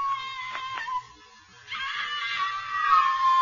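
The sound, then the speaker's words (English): A woman's shrill, sustained scream, high-pitched and loud, breaking off briefly in the middle before rising again even stronger and more strained toward the end, as she is carried up the Empire State Building. “The crowds below were silent with fear. The only sound was Anne.”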